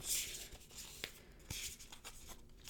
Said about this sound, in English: I'm just shuffling the cards.